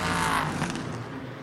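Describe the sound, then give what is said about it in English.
The engine of the No. 60 Meyer Shank Acura GTP race car roars loudly and steadily for a moment, a dense, buzzing mechanical noise as it accelerates out of the pit lane after a pit stop, with no voices present. “First car rolling is the number 60 from Meyer Shank, but the first car back off the lane.”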